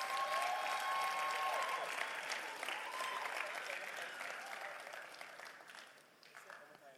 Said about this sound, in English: And clap for the Aquaba ladies.